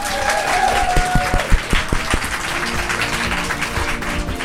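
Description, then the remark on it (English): A big round of applause, many hands clapping in a dense, sustained burst with a few sharper claps standing out early on, steady and loud throughout. “Nice big round of applause”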